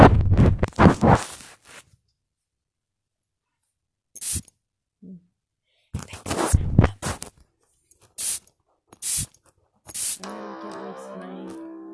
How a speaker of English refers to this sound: Okay, so that was perfume spraying. It really does cool.